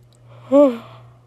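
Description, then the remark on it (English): A single human yawn, a rising then falling voiced exhale lasting about half a second, with a faint steady hum underneath and no talking. “Excuse my yawn again.”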